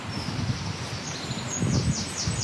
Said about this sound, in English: Just dropping a bit deeper into the woods now. Beneath some oak trees and a few more sycamores again. Wind whistling through the trees.